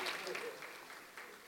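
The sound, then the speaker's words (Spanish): An audience applauds for their pastor in a steady, dense wash of clapping that holds for the whole moment at a fairly soft level, with faint voices mixed into the noise. “Aplauda, hermano, si no tiene las manos quebradas con su pastor.”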